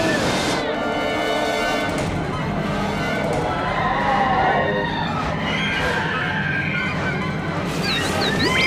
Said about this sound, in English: The terrifying scream of BZ as he's flung out of the ship into the tunnel of hyperspace. That is, what a brave little droid.